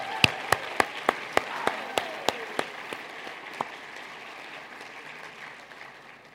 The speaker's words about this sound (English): How about we start by giving them our thanks? A round of applause.